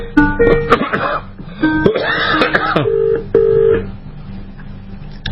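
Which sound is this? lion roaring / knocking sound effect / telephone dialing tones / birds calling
telephone dialing tones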